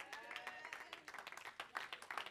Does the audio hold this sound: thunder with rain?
no